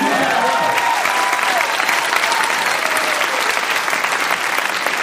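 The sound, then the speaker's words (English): Steady, loud applause from a comedy show audience at a festival, clapping for comedian Charlie Sanders: a dense wash of many hands clapping at once, with a few faint cheers or voices mixed in. “Clap for Charlie Sanders.”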